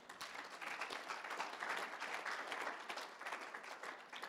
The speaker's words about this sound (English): Well, give the Lord a clap for that.